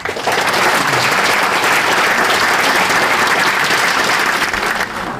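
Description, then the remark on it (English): A large audience at a football club event applauds the players steadily for about five seconds, congratulating them on their weekend win; a dense, loud wash of many hands clapping at an even level with no voices on top. “I'd like to ask you to give them a round of applause as they say congratulations on the win at the weekend, fellas.”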